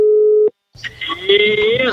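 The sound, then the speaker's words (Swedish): A telephone call tone as a phone call is placed: one steady, mid-pitched beep lasting about half a second that cuts off abruptly, followed by a brief pause and then a busy burst of voice-like sound. “Då tänkte jag att vi skulle ringa ett samtal faktiskt.”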